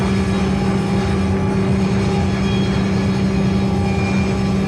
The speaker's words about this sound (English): And then the other side of it is the old Weyerhaeuser sawmill in Snoqualmie, which was the Packard sawmill. And they have 30 minutes of sawing logs.